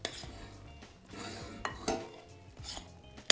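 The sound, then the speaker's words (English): A utensil scrapes and knocks around a bowl as kale is folded into soda bread batter with potatoes, with a steady run of soft mixing strokes broken by a few sharp clinks. No one speaks. “And I'm going to fold that into the batter, and it's going to make a little bit of a green fleck. Get it nicely blended.”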